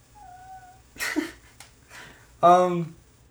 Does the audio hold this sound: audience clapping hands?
no